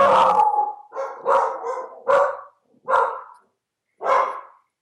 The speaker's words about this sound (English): My dogs disagree with you. Obviously, vehemently disagree.